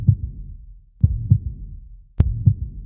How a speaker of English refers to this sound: One of my favorite ways to meditate is to sit comfortably, place one hand on your heart, and see if you can find your heartbeat.